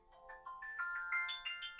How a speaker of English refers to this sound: That is my medication alarm.